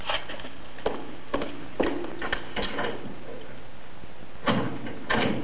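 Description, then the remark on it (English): Doors in a school bang and clunk open and shut again and again at an irregular pace, several sharp knocks standing out over a steady background hiss, with no one talking. “How many doors do you have?”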